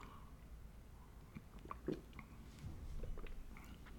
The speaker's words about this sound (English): I'm going to talk about that real quick after I take a sip of this coffee.